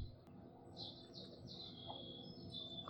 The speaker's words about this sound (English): I think that's a starling.